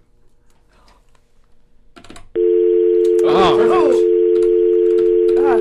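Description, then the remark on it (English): An incoming call signal starts abruptly as a loud, steady electronic tone that holds unbroken to the end, with a brief exclamation and people talking over it partway through. “Well, the light means there's a phone call coming in.”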